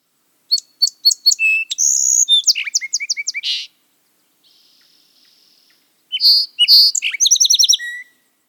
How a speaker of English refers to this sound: For comparison, let's review a song sparrow really quickly. Here is the song sparrow song.